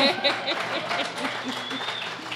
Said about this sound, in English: Yeah, shout out to your partner standing in the back of the room right now. Yeah. Yeah, claps, yeah.